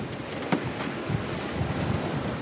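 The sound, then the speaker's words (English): Steady wind rushes across the microphone while waves slap and churn, a continuous, fairly loud wash of open-water noise heard from aboard a sailing boat at sea between Bray and Greystones around midday on a sunny summer Saturday, with no voices. “Look at how nice the fields between Bray and Greystones look on the hills as you sail by.”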